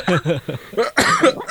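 A burst of several harsh, loud coughs, with voiced, throaty bits between them that hint at chuckling or speech.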